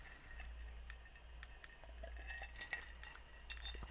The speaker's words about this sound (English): damn, it really took everything in me today to do this episode, but I'm glad that we're here, so let's go ahead and cheers. Absolutely. Let's do it. And, of course, we're drinking fucking tequila, because I mean, what else is new?